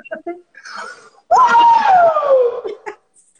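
A single loud, excited scream lasting over a second, starting high and sliding downward in pitch, preceded by a brief soft giggle or murmur.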